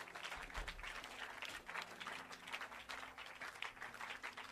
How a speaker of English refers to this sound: Clap and clap.